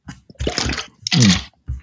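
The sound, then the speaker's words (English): A person takes a quick drink of water, with a couple of gulping and swallowing sounds, wet mouth noises, and a short breath at the end, no talking. “Let me get a quick drink of water here.”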